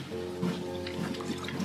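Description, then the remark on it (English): Someone drinking water while walking at about 4.7 kilometers an hour: quiet, wet liquid sounds and small drips over a steady low background hum, with no talking. “And I'll have some water.”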